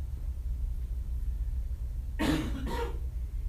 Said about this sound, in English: Fighting this cough, so I thought it was gone, but maybe not.